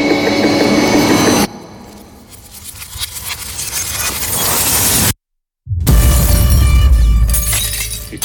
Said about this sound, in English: It's amazing. The glass will shatter.